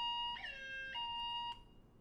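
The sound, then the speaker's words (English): An electronic siren wails in stepped tones, jumping between pitches every half second or so. It's loud, with no talking over it. “We need a siren.”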